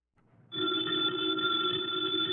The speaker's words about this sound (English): Ladies and gentlemen, the ringing of that phone bell means mystery, adventure.